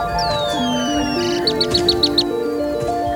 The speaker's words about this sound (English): No, it's a bird.